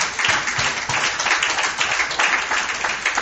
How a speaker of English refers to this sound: Dale un aplauso a Dios. Give God a round of applause.